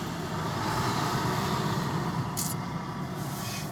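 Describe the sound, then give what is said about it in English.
A large truck engine idles close by outdoors, a steady, loud low rumble that holds constant throughout, with a brief hiss of air partway through. “there's going to obviously be understandable outside noises, like this truck we're next to right now”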